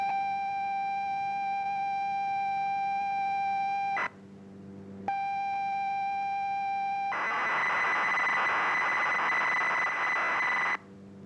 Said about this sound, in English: And there it was. It worked. Across the county, dozens of people had captured these mysterious tones onto a cassette, played that cassette into their computer, and then on their screen.